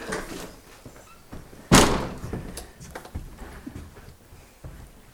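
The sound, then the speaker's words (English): A chunky, heavy oak door with its original handle, in a house renovated to its 1920s look at the head of Loch Ewe, is handled: some light clunks and rattles, then one loud solid thud as it swings shut, followed by smaller knocks and footstep-like shuffles. “We've got the original door handle and everything, this chunky big oak door.”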